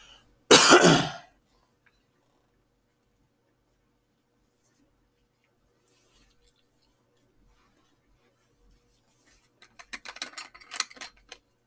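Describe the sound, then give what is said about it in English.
A canister lid being worked open to take a drink of water: one loud, rough burst at the start, a long stretch of near silence, then a quick cluster of small clicks and plastic taps near the end. “Had to get my lid off the canister.”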